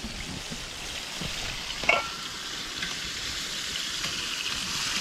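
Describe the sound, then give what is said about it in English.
Fish sizzles steadily in hot oil, a dense, even crackle that holds throughout, broken by one sharper pop partway through. No one speaks. “if you cook them too long to make them dark, which everybody's thinking of golden brown”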